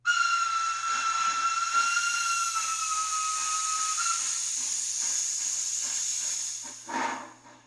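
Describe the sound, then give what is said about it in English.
A steam locomotive whistle blows in one long, steady shriek, loud, with a hissing rush of steam underneath and a low hum, tapering off near the end. “But why aren't they ending their promotions with the steam whistle blow?”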